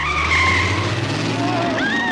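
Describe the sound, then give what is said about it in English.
Loud car racing in a street race in a film scene: engines roar steadily underneath while tires screech in long, wavering squeals that rise and shift in pitch across the whole couple of seconds. “And he gets in a race on the streets with a car full of Latinos,”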